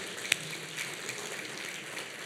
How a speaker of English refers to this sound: Y'all are golf clapping them. You don't want to offend them, so you're like, I don't want to be the loud one.